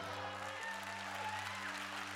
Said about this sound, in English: Oh, if I was John Gray, you'd be giving me a bigger hand clap than that.